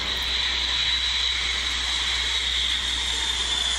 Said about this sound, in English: Think Workhorse, been in service for 50 plus years. That's a B-52.